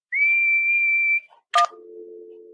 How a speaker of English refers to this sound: What's whistling anyway? You put your lips together and blow. Like this.